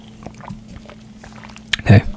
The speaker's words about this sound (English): let me take a sip of tea